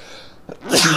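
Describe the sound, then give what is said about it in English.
A single loud sneeze: a short inhaled catch followed by an explosive, hissing burst that fades quickly, with no talking during it. “Yeah, well, I should have fucking sneezed at you.”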